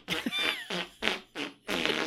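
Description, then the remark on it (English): A voice blows five quick, sputtering raspberry-style fart imitations in a rapid series, each burst buzzy and wet, fairly loud, with short gaps between them. “Why were you doing the Nutcracker suite and fart noises?”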